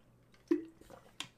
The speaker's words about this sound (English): All right, we're on water break 5.